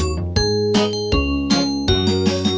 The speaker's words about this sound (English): The bell on the bus goes ding, ding, ding, ding, ding, ding, ding, ding, ding. The bell on the bus goes ding, ding, ding, all day long.